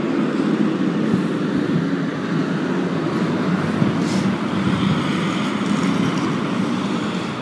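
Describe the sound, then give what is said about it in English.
Big concrete trucks rumble steadily past on a small back road twisting through pine trees, their deep engine roar and tire noise filling the scene for several seconds, with no voices. “This seems like such a small little back roads twisting through the pine trees here that it seems amazing that these big concrete trucks are going up and down here”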